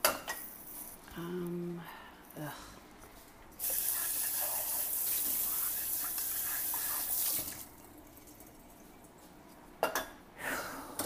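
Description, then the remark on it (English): Pots and pans clank and knock together at a sink while a dishwasher is being loaded, with a scattered few clatters before a faucet gushes steadily for several seconds, then more clinks of dishes at the end. “So everything else here is pretty much pots and pans, and those are too dirty to go in the dishwasher.”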